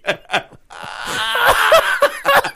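A loud, drawn-out fart right up against the microphone, raspy and buzzing with sputtering pops, preceded by two short bursts of sound.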